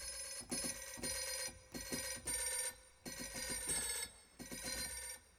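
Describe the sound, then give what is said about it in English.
A pop melody plays as a phone ringtone, a bright electronic tune in short rhythmic bursts with brief gaps, fairly loud, with no one talking. “I'll put it on the phone option. Does this actually have tune? Oh, it does.”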